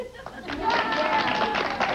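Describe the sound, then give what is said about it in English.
The studio audience of the Donahue show in 1987 claps in a dense, continuous burst with laughter and voices mixed in, reacting to Donald Trump talking about his book Art of the Deal. The applause swells after the first half second and stays fairly loud throughout. “And they're laughing and they're applauding because he's being honest.”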